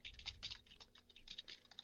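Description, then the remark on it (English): Rapid, irregular keyboard typing at about 96 to 110 words a minute, with many quick clicking keystrokes packed closely together, moderately quiet, with no voices present. “Clicking and popping. Yeah. I mean, you type fast.”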